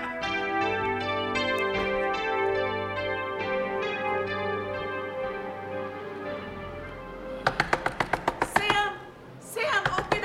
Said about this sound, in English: Once again, a knock on the door waking me up, and I was so tired.